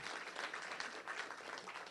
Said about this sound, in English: Let's have a round of applause for our panel. Thank you very much.